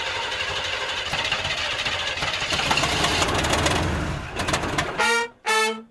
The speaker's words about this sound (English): Need to get that car fixed. Yeah, that car's not starting properly.